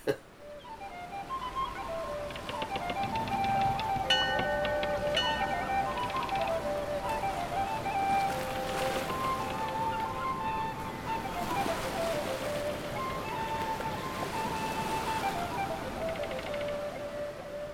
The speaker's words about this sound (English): First boat out of the harbour today.